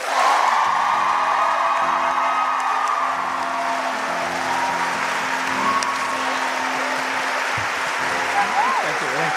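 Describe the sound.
A live audience in DC breaks into sustained applause mixed with cheers and whoops, clapping as a vote for the winner of a 30-second recap, a dense, steady wash that stays loud for about nine seconds with scattered voices shouting through it.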